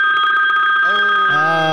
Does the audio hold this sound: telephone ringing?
yes